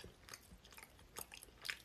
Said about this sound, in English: … says, your chewing is so loud. Great. That better?